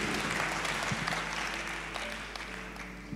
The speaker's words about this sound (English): 40,000 salvations. Clap for yourselves, you guys.